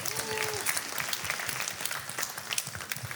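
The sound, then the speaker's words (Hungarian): An audience applauds steadily after being invited to applaud a question, a dense wash of many hand claps at moderate volume with no break, and a brief faint tone sounding near the start. “Jár a taps a kérdés.”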